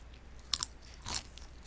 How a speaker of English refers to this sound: Are you going to chew? Okay. I could do that. Okay. Well, while I chew, I'll talk, because I don't know if this will make much noise.